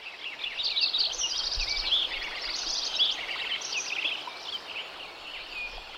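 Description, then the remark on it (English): A dense chorus of birdsong recorded in 1988 in Lincoln Meadow, an alpine meadow in the Sierra Nevada mountains: Lincoln sparrows, warblers, Williamson sapsuckers, woodpeckers, golden-crowned kinglets, robins and grosbeaks, many overlapping chirps and trills, with squirrels, spring peepers and a steady hum of insects. “You can hear the voices of Lincoln sparrows, warblers, Williamson sapsuckers, woodpeckers, golden-crowned kinglets, robins and grosbeaks, as well as squirrels, spring peepers and numerous insects.”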